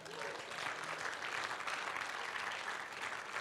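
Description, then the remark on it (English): An audience bursts into steady, dense applause with cheering for Jesus mixed in, a loud continuous patter of many hands clapping that holds evenly for a few seconds. “Can we cheer Jesus?”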